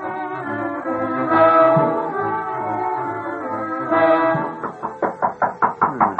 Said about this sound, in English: There's a door. Somebody hits a knock.